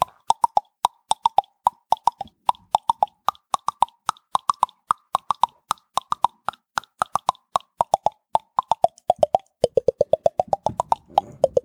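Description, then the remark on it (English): A rapid series of sharp, hollow tongue clicks plays the Christmas song Carol of the Bells, the pitch of each pop rising and falling in a repeating four-note pattern that speeds up near the end, with no talking. “Would you like to hear a Christmas song?”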